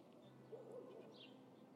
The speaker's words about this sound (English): As you can hear, there's plenty of birds around.